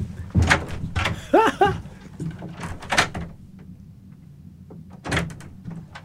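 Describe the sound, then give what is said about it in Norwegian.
A door opens with a brief creaking squeal and rattling handle, then shuts with a solid thud, followed by a few softer knocks, as a person steps out and comes back in. “Da går jeg ut og kommer inn.”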